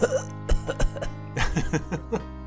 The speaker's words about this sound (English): pathetically coughs.